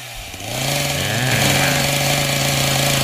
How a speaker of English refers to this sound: It's that chainsaw that has always been added to every haunted house that terrifies everyone every time.